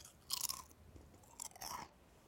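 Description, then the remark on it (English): Crunchy chewing of kettle-cooked barbecue potato chips, two loud bursts of crisp crackling bites with a brief pause between, no voices present. “Having some of those kettle cooked chips barbecue.”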